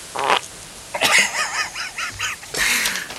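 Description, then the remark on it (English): A squeaky, wavering fart: a few rough bursts followed by a string of quick, high-pitched warbling squeals, ending in a loud sputtering blast. No one speaks. “I farted. And it stunk.”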